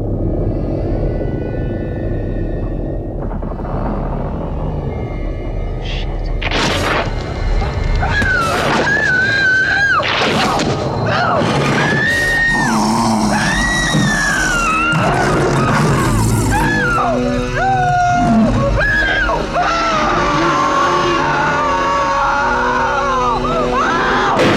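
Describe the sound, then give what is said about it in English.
In a film scene, deep, rumbling growls of a giant demon dog in an apartment mix with loud, wavering screams and howls as a woman is possessed, building into a dense, chaotic din that fills the whole scene without letup. “So she shows up at her apartment, the lights are out, and she essentially has one of these giant dogs in her apartment, and she sits down in a chair, she has some like demon arms wrap around her”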